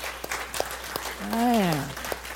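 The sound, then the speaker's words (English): An audience claps in scattered, uneven bursts while a single voice rises and falls in a drawn-out call over the middle of the applause. “Listen, I feel like we needed to clap right then.”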